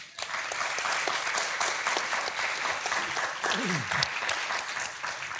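A live audience applauds steadily for several seconds, a dense, close wash of many hands clapping at once, with a brief low vocal sweep partway through.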